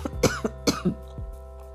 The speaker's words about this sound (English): Oh my God, that was not planned. I just I coughed because I actually needed to cough.